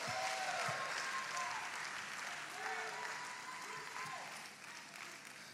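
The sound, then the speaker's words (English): A church audience claps steadily for several seconds, a dense, even wash of applause with scattered voices calling out beneath it, holding fairly loud throughout. “Somebody clap your hands right now in the fear of the Lord.”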